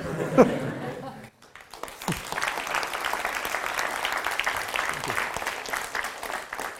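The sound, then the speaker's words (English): At the end of a talk, an audience bursts into steady applause after a brief pause, a dense wash of many hands clapping that holds at an even, moderately loud level to the end. “Or you can clap.”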